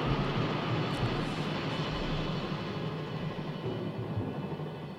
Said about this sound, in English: You can even hear the helicopter flying overhead that gives them the wind. Yeah, yeah. You hear the helicopter?